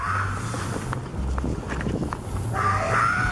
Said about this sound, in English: It's the middle of the night, just a homeless guy screaming on the streets. Could you imagine you're walking home, right, after a night at the bar, and this is what you hear?